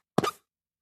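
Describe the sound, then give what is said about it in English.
A single short, squelchy hand fart made by squeezing cupped palms together, a low, fluttering pop lasting about a quarter second before it stops abruptly, with no talking. “You both have very distinctively different hand farts.”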